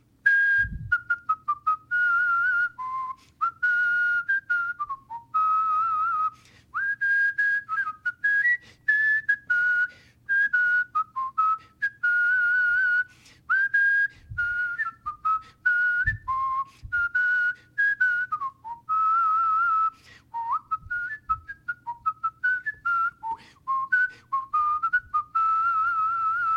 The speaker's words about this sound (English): So I did whistle that song. So I'm going to whistle one verse of it, and then you are going to whistle with me. If you can't whistle, you can hum or sing, but hopefully we will have good participation here.